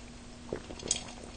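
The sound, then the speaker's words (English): A quick sip from a drink: a soft, faint clink of a glass followed by a brief wet slurp and swallow, over a low steady hum with no talking. “So I'm going to take a quick sip here.”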